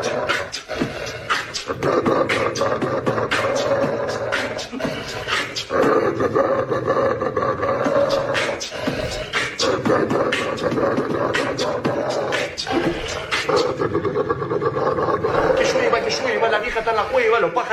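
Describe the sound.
A dog growls and snarls in a deep, sustained, angry rumble that carries on loudly throughout, with people talking over and around it.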